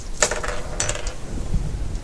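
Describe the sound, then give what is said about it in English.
A handful of dice clatter across a tabletop in two quick, bright bursts of rattling clicks, then settle into quiet room tone; many dice rolled in a game for a falling dinosaur. “I saw him roll a lot of dice for a falling dinosaur.”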